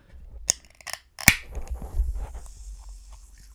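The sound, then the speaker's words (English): A few sharp metallic clicks build to a louder crack, followed by a long, soft carbonated hiss that slowly fades as a can of pop is opened very slowly and carefully. No one speaks. “That may be the slowest anyone has ever opened a pop.”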